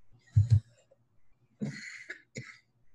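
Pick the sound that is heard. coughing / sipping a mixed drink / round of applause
coughing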